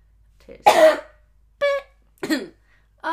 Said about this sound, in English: I am ready to leave you with a cough.